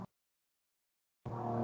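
After a second of silence, a loud car engine outside abruptly roars in, holding a steady, low, buzzing harmonic drone as it drives past.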